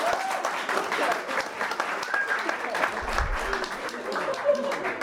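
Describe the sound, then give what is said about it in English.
An audience bursts into steady, dense applause, voting that sex on a grave is fine, the clapping holding at an even level for several seconds, with a few faint voices and whoops mixed in. “Round of applause if you're like, fucking do it on the grave.”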